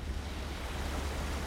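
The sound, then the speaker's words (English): A steady, loud rush of churning water with a deep low rumble underneath as a pickup truck drives through water flowing over a road after Hurricane Ian, continuous with no voices. “right here we're going through some water that it was flowing over the road right here.”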